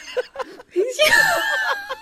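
A person yells in a raised, strained voice. A few short vocal bursts lead into a longer sustained shout that stays loud for about a second, with no clear words.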